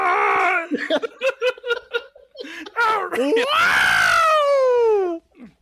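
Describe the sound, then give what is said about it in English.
A single voice imitates the Star Wars droid R2-D2's beeps and whistles: a rapid run of short warbling chirps, then a long, loud, squealing whistle that slides downward before cutting off. “Is that the R2-D2? That was.”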